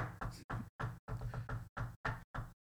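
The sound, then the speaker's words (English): About nine tapping knocks on a table, a message tapped out in Morse code, mixing short raps with a couple of longer, rumbling ones, each separated by brief silence. No voices. “New segment in which I'm gonna start tapping a beat on the table and you're gonna guess what I'm saying in Morse code.”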